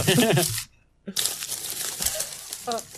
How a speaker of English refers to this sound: Oh, so me digging through my pockets for sure.